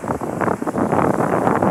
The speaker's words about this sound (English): Hi everyone! For today's update, I brought my MacBook down to the shores of Tanayan Jungle, okay, South Yarmouth, for the recording. I hope you enjoy the wind and the waves.